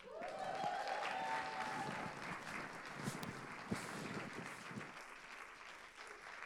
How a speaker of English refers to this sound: Keep clapping, it's a long walk.